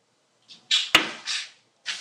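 A crossbow bolt whizzes past and flies into the trees: a string of short, airy hissing whooshes broken by one sharp, crisp snap near the middle, with no voices.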